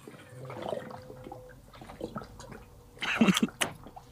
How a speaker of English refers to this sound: Hold on. Yeah, this is apropos. Here it is. See, I like to see that. That's just maximum hydration right there. Just drinking. Everyone drink water.